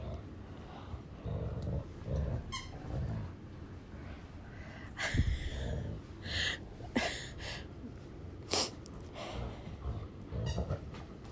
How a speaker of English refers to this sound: No, I think Addie said Cujo. That's what she sounds like. Her growls. She does.